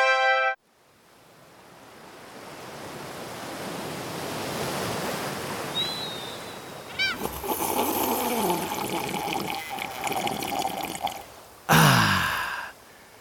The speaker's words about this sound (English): I just love the beach. The sound of the waves, the sand between my toes, a slight breeze in the air.